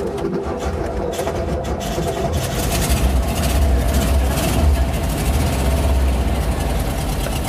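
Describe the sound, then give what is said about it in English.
A heavy old engine idles steadily, a deep low rumble with a rough, uneven knock running through it, loud and continuous with no voices. “This is what engines used to sound like.”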